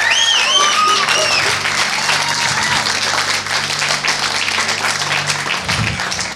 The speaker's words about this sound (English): Let's give Barry a round of applause.